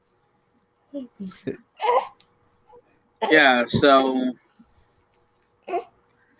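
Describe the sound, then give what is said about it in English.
A newborn baby girl fusses with a brief, wavering whimper lasting about a second, after a few short spoken words from an adult; a small sound follows near the end. “Like, but she's a newborn baby, and you know in your head that babies can't do anything for themselves, but until you actually experience it, right?”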